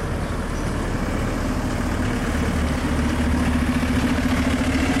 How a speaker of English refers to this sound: A choo-choo train. A town train is coming.